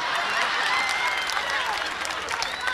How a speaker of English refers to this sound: Now, a lot of you are clapping.